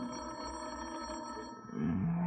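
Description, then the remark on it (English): A telephone rings with a steady, high electronic-sounding tone that holds for about a second and a half, then cuts off as a lower, louder tone swells in. “One of the bells I didn't like. It was the phone.”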